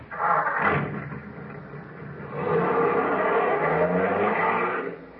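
A car engine rumbles, then revs up and roars steadily as the vehicle pulls away, loud and continuous, with no voices over it.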